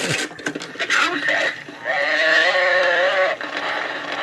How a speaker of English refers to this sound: You would pull a little zip string, yeah. And then it would turn, and wherever your arrow was, it would say, the cow, whatever the animal is, it would say, the cow makes this noise, and it would make the noise.